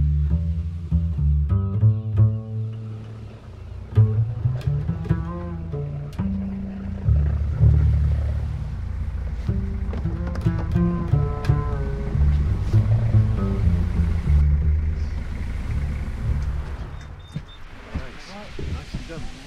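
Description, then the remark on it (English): A boat's engine rumbles low and steady as it comes in to land at a jetty on Orford Ness, a shingle spit, with water sloshing and lapping around the hull and faint knocks along the jetty. “Standing on the jetty, having just landed on Orford Ness.”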